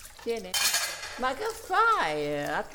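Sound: dishes and cutlery clinking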